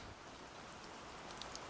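Steady rain patters down in a soft, continuous hiss, with a few sharper droplet taps near the end; no voices, just the even wash of falling rain.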